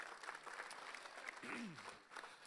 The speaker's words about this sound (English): Amen. We can give that applause to the Lord right now. Come on, somebody.